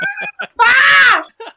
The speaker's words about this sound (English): He ain't gangster. That's a little bitch. Look at him screaming.